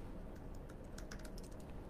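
Quiet, irregular clicking of someone typing on a computer keyboard, a quick scattered run of keystrokes over a low steady background hum, with no voices.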